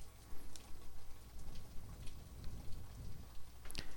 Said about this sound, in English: I wonder how well you can hear the rain. I guess I can hear it.